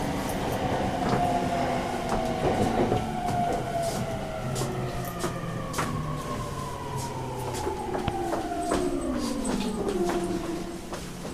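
Steady rumble from inside a moving non-express Tokyo commuter train on a half-hour ride, with gliding tonal whines from the motors rising and falling and scattered clicks of wheels over rail joints; no one speaks.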